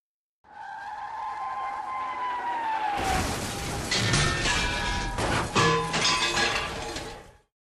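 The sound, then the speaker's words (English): A truck's high, sliding screech of tires builds for a few seconds, then erupts into a loud crash as it is driven straight at a steel shutter, with crunching metal and scattering debris that clatters on before cutting off. “Vidad started the truck and drove straight at the steel shutter.”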